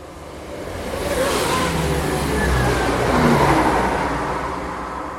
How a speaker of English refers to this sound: Here comes another train.